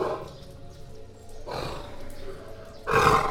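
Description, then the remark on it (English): A low, rough animal growl comes in two bursts: a sustained rumbling snarl, then a louder, harsher roar at the end over a quiet background. “Her ears go flat, and there is a growl.”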